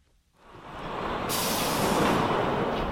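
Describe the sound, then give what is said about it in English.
A bus carrying students from Parkland, Florida, arrives in snowy Washington, its air brakes releasing a loud, sustained hiss that swells in and then holds steady over the low rumble of the engine. “When the bus arrives, you could mistake this for a regular class trip.”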